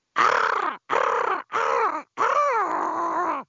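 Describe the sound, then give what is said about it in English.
A person's voice imitates an eagle's cry in four loud, raspy, harmonic screeches with short gaps between them, the last one longer and drawn out. “Give us your eagle.”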